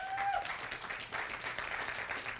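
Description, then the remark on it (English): An audience applauds in a steady, dense wash of clapping that holds throughout, with a brief rising whistle cutting through at the very start. “Yeah, that applause is for you guys.”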